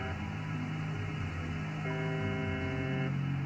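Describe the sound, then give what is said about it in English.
A steady, low radio drone hums throughout from a numbers station in Western Russia known as the Buzzer, broadcasting at 465 kilohertz; then a harsh, harmonically rich buzz cuts in for about a second before falling back to the continuous hum, with no voices. “A number station in Western Russia broadcasts constant buzzing at 465 kilohertz.”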